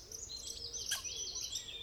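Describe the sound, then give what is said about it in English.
Squirrels chattering fast in quick, high-pitched bursts that overlap continuously, with a brief sharper chirp in the middle, moderately faint, from all around in a forest on a cold morning; no one speaks. “He hears squirrels chattering fast around him.”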